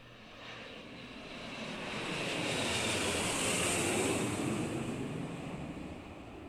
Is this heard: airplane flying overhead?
yes